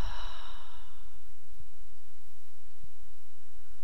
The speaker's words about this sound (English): Breathing in and out through the nose. If you'd like, you can take a deep inhale through the nose and exhale through the mouth.